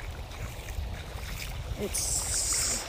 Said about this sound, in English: Walking along the ocean, the Atlantic Ocean. And so if I look, and I can't look, if I go far, far, far away, it's Canada. And this tide is coming in now. It's low tide, and it's coming in.